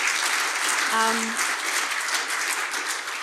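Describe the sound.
A crowd applauds steadily in a dense, continuous wash of clapping, with a brief cheering voice rising above it near the start.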